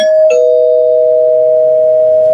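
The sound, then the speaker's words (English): A doorbell-style spoiler warning bell sounds its two-tone ding-dong, a bright first chime dropping to a lower sustained tone that rings out steadily, loud, with no voices. “Right, we did, and I, you know, we rang the spoiler bell, but just in case.”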